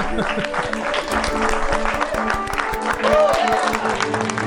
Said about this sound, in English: It deserves a lot of clapping. You guys have worked hard and you've all earned your stock option. Congratulations.